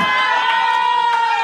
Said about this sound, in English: That was the first. That was the first cheering for Bumble I've ever heard in my life.